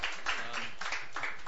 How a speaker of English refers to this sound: And I was going to say he's been around, but let's give him a round of applause for a first-timer.